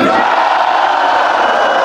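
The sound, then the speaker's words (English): A loud, sustained chorus of many members of the US House of Representatives shouting "no" together in a voice vote on a motion to adjourn until 10 p.m., a dense roar of overlapping shouts that holds steady for about two seconds. “After the shouting faded, they took an electronic vote, and the House of Representatives took the evening off to regroup after edging much closer to electing California Republican Kevin McCarthy as Speaker of the House.”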